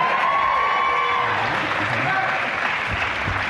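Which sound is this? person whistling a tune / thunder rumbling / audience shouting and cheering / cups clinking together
audience shouting and cheering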